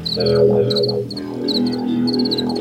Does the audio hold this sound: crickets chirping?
yes